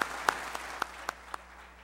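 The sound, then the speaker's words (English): A church audience claps hands in unison as praise to the Lord, about six sharp, evenly spaced claps in a steady rhythm that fade slightly toward the end, with no talking. “And I want you to put your hands together tonight, and I want God's people in the house of God to give the Lord a hand clap of praise for what the Lord's going to do in our hearts and minds tonight.”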